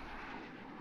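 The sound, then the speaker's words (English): A steady, broad roar of jet bomber engines rumbling overhead, dense and continuous with no break. “Jet bombers.”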